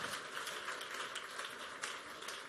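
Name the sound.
audience clapping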